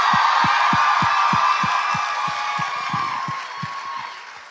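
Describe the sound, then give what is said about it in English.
A live audience cheers and applauds in a loud, dense roar, with a steady beat of low thumps like rhythmic stomping underneath, easing off slightly toward the end. “We're not cheering for the murderers.”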